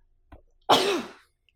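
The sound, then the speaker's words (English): A single loud sneeze caused by allergies: a short sharp intake of breath followed by an explosive, breathy burst that fades within about half a second, with no talking around it. “Oh, good Lord. Bless you.”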